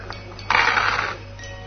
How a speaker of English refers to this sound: Santa's rolled badly. Yeah, but he's still got dice to go. Yeah, he has. Oh. Santa has beaten you.